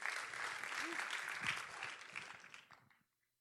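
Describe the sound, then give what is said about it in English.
An audience claps their hands together after a prayer, as they take their seats, in a dense, steady burst of applause lasting about three seconds, with scattered voices underneath, before it abruptly fades to silence. “Clap your hands as you're seated.”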